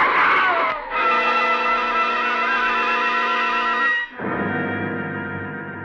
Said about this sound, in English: There's a helpless skidding sensation as the car lurches across the wet pavement, and then a sickening thud.